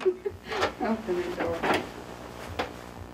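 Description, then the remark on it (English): In archival CBC footage, a hotel room door is unlatched and swung open with a few sharp clicks and clunks, while a voice murmurs softly over the first half. “Open the door.”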